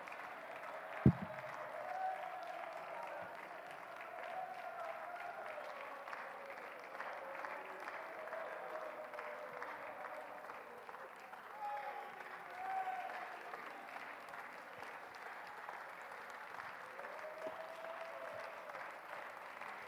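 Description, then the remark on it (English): A church audience claps steadily and continuously during a praise break, a dense wash of many hands applauding together with faint voices underneath, sustained at an even level throughout. “Somebody clap your hands and love him.”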